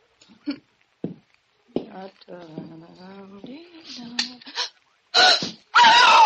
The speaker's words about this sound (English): Why did you scream? Well, who wouldn't? The room was a shambles.